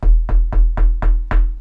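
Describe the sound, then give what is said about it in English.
Six steady knocks on a door, evenly spaced and fairly loud, each a solid thud with a quick decay, with no voices. “That's a nigger knocking.”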